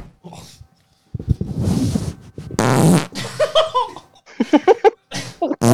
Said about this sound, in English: Carry him out with the farts.